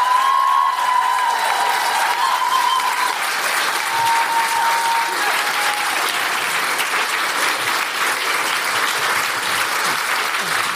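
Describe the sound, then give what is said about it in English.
Loud, sustained applause from a large audience for women advocates who had come to speak, a dense steady patter of clapping that holds for the full stretch, with faint whistles or cheers early on. “And I want to give them all a huge, huge round of applause.”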